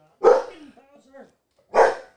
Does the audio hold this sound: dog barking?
yes